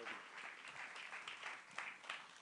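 A crowd applauds steadily, a dense wash of many hands clapping at once with a few louder bursts standing out. The applause holds fairly even throughout and no one speaks over it.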